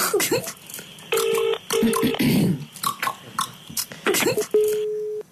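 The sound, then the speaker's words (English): A call to a landline, to Gay Waterhouse: a flurry of quick dialing beeps, then steady ringing tones that repeat in evenly spaced bursts over a background of faint voices and movement. “It's a landline, so it's probably the home phone.”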